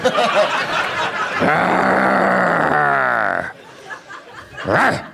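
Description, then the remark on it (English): A woman lets out a long, rough growl, strained and harmonic, sustained for about two seconds with a falling pitch, followed by quieter vocal noises and a brief second growl-like burst. “She growls,”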